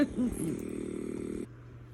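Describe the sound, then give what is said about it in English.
A steady mechanical vibration from an airway clearance vest treatment given in a van for breathing issues, humming with a rapid, even pulsing before cutting off abruptly near the end and leaving a quiet background rumble. “So we're having the vest treatment right there.”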